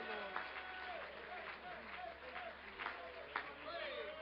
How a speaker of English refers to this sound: In Jesus' name, clap your hands unto the Lord one more time. Thank you, Jesus.